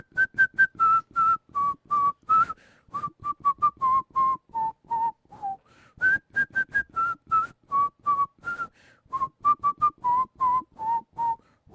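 A person whistles a tune, a steady run of short, clear notes gently stepping down in pitch, repeated as two similar phrases with a brief pause between them.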